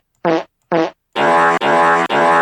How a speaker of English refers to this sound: Oh, it's all farts, okay. All farts all the time.